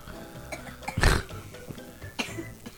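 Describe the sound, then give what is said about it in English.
A loud cough bursts out once, harsh and low, followed a moment later by a smaller, lighter cough. No one speaks. “Cough more.”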